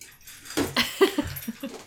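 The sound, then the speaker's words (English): A dog, Rosie, whimpers, letting out a quick series of short, pleading whines and yips over about a second and a half as she waits for her snack after going out, with no one talking. “Rosie has to eat a snack after she goes out. Everyone listening, I will tweet out a picture of my dog”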